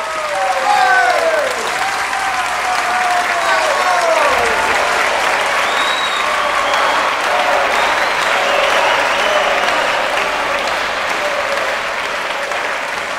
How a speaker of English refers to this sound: Still stunned by what it had just experienced, the audience was jolted back into reality by the sound of a lone, sustained clap, followed by a few sparsely isolated claps, which quickly turned into cheers.